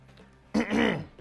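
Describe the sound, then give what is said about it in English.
A man clears his throat with one abrupt, rough cough, fairly loud, lasting about half a second before fading back into near silence. “Excuse me, I'm coughing here.”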